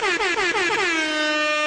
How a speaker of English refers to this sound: Instead of me and Pavlos doing it, now we have actual edited air horn effects.